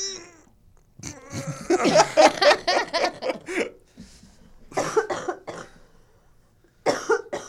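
A harsh coughing fit: a rapid string of hacking bursts, then a pause and a couple more coughs, preceded by a brief strained vocal groan.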